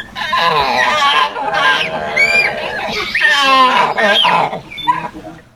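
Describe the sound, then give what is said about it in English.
Proboscis monkeys feasting on fruit, with a loud, steady chorus of nasal honks, squeals and chattering calls overlapping continuously, their pitch sliding up and down throughout. “That is proboscis monkeys feasting on fruit.”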